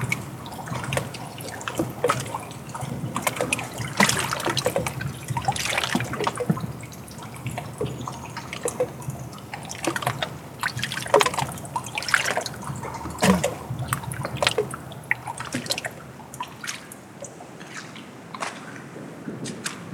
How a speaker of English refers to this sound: And hearing the water negotiate its space around other objects soothes my soul.